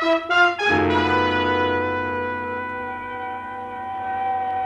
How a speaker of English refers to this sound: The sound of an ambulance wheeling into the receiving room below shatters your train of thought.